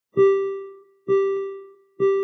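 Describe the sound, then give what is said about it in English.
A monorail door chime sounds three times in a steady rhythm, each a bright, clear tone with ringing overtones that decays before the next strikes, with no talking. “Please stand clear of the doors. Hey guys, on the monorail”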